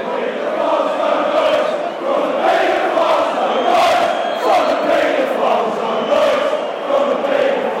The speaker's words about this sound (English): Great tackle by Martin. You can hear the roar of appreciation as we took to 70 minutes.